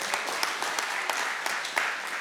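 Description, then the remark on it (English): A church audience applauding, with dense, steady clapping punctuated by sharper individual claps and some crowd voices mixed in throughout. “Yeah, y'all cheer now, but in a few, you know, who knows, in a year or two, I'm probably going to make a decision you're not going to like.”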